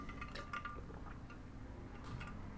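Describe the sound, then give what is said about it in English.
Someone drinking water: a few soft clicks and small glassy taps, with faint sipping sounds over a low steady background hum. Nobody speaks. “Sorry, drink of water.”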